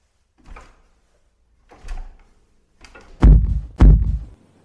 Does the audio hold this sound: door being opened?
yes